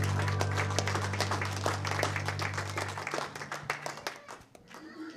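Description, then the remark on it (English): An audience claps in praise, a dense burst of many hands that thins out toward the end, with a low sustained organ-like hum underneath for the first few seconds. “Another hand clap of praise.”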